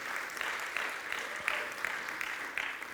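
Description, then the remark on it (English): A crowd applauds steadily, a dense wash of clapping that holds at an even level for the whole stretch, with faint voices mixed into the noise. “Come on, can you give him a great round of applause?”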